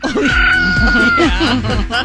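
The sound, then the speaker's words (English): Roosters cluck and squawk in a dense, agitated burst, several sharp calls overlapping over about two seconds, loud with no pause. “Don't they have a similar thing when two roosters are fighting in a cage?”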